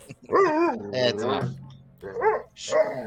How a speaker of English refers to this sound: My dog is getting mad at me.